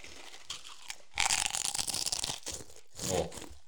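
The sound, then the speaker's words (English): Crisp crunching of stacked Las Meras Pringles potato crisps being bitten and chewed: a long, dense run of sharp, crackly crunches, then a shorter burst after a brief pause. Loud and clear, with no talking. “Cheers to the Las Meras Pringles.”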